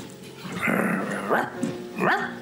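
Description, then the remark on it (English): A person imitates a dog barking: a drawn-out growly woof followed by two sharper, rising yelps, loud and spaced about a second apart. “I should have barked at them on the camino.”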